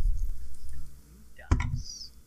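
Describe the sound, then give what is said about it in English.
After a quiet, low rumbling stretch, a sharp clatter of dice tumbles briefly onto a surface as a player rolls new dice during a game, then settles quickly. “I'm gonna get the new dice.”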